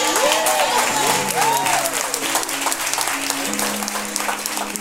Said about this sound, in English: That's worth a clap.